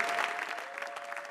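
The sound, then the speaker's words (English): An audience claps for Jesus together in a dense, continuous wash of applause, steady and moderately loud, with no voices standing out above it. “Give a mighty clap unto Jesus.”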